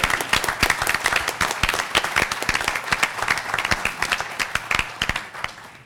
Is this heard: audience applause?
yes